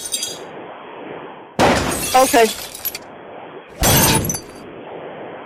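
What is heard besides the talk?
glass breaking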